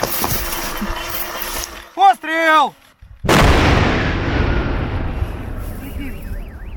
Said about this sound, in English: This is a high-explosive fragmentation bomb to kill people, designed just to kill people. They blow up the cluster bomblet on the spot and then move the heavier bombs to a different location for a massive controlled explosion.